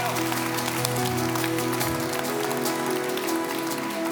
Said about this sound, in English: And if you believe God's bringing you to the next stage, if you believe he's bringing you out of your zigzag into your palace, give God a clap and a shout and thank him for who he is.